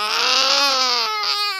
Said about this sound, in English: So that night, I let my son cry it out for 10 minutes in the booth. And I got some really horrible baby crying sounds. But they ended up being used in the film Noah in the big climactic ending sequence.